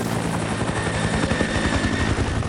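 A helicopter roars overhead, its rotor blades chopping in a fast, steady low thump beneath a loud wash of engine noise that stays constant throughout.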